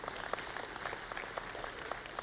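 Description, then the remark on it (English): An audience at a Baptist church claps and applauds together during a sermon, a dense, steady patter of many hands, with no voices standing out. “We're not supposed to clap and say stuff out loud.”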